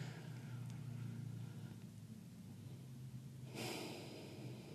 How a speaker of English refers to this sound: And all we're doing is breathing in, holding a little longer, breathing out a little longer. Experiencing the bottom of the breath before you start the next journey.